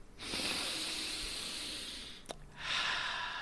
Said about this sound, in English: Breathing in through your nose is so awesome. And I think that it's going to be my superpower tonight.